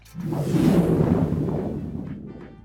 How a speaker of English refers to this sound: Oh, we still got lightning?